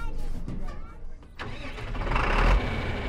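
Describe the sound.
A tractor engine at Peabar Farms sputters, pauses briefly, then catches and roars up into a loud, steady rumble, with faint voices in the background. It is a crisp fall afternoon, and the tractor is carrying families to a pumpkin patch.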